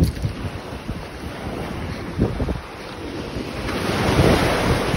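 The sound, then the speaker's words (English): Waves wash steadily against a beach on a mild, beautiful day while a light breeze buffets the microphone, the surf swelling louder toward the end. Outdoors, nobody speaks. “So guys, I see the little man going down to the sea. Oh, it's a beautiful day here. It's mild, you know, there's a bit of a breeze, but it's mild.”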